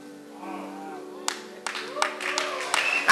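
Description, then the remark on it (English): A group claps together in a steady rhythm at the House of Prayer for All Nations in Bertois, clapping for the Lord, sharp hand claps landing about every third of a second, with a sustained hum of music and murmuring voices underneath, rising to a loud burst at the end. “Let's clap for the Lord.”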